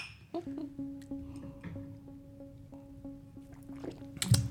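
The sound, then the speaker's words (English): Wine glasses clink once in a toast, and a clear, steady ringing tone hangs in the air for several seconds, slowly fading while faint handling sounds and rustles occur. “We have cheese, strawberries, and wine, so this should be fun. Oh, I'm nervous. Cheers. Cheers. I'm going to start with a little clang.”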